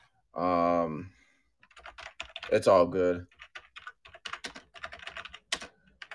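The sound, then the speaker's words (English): Rapid, clattering computer keyboard typing with sharp, loud key clicks in irregular bursts, following a brief spoken phrase, as a draft board is being set up. “And if you hear the clicking sound, that's just going to be my keyboard. It's loud like that.”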